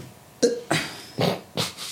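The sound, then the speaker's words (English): Four small, dainty burps come in quick, uneven succession, each a short airy burst that fades quickly, with no talking around them. “It's interesting how your burps when we're recording are like little lady. Dainty.”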